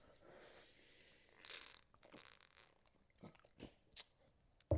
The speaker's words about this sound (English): I need to take a sip for this one.